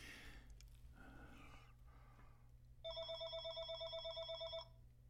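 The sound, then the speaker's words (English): A telephone rings with an incoming call, a rapid, warbling electronic trill, one burst lasting under two seconds, fairly loud over a steady low hum, with no one talking. “Incoming phone call.”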